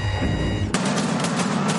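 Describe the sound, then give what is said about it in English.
A low electronic hum gives way to a loud, continuous rattle of rapid automatic gunfire, harsh, with a steady rat-tat-tat rhythm and no voices, from a Squid Game-themed Halloween light show display at a house in Michigan. “The over-the-top display at a house in Michigan even comes with the rat-tat-tat of gunfire.”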